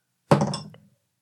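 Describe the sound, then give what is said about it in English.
A die rolled during a dice game lands on a table with one solid thunk, followed by a short, fading rattle lasting under a second before silence; it comes up six, the fourth six in a row. No voices. “It was spinning like a top for easily 5 seconds.”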